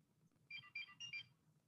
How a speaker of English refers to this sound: Beep, beep, beep, beep. Kim Possible sending us off.